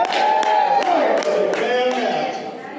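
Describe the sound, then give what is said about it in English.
A church audience shouting and cheering in praise together in a continuous loud swell, with sharp claps or stomps punctuating the din roughly every half second. “Hey, and they're shouting again.”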